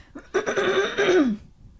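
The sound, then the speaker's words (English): A single rough cough drawn out into a throaty, voiced rasp that trails off with a falling pitch, heard on its own with no talking. “I have to cough.”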